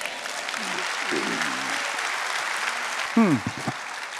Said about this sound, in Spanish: Date un aplauso.